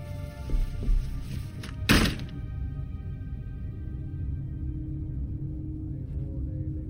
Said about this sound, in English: He pocketed the hair as if it were the most normal thing in the world, and left, going into his own room and closing the door smartly behind him.